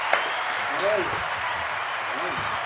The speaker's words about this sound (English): Ah, awesome, awesome. Damn. How about that? How about that? A little applause there, huh?